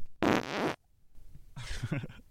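Two fart sounds in quick succession: a short, airy hissing burst, then a longer, wetter sputtering one with a rumbling, buzzy tone. Both are fairly loud and close, with no talking.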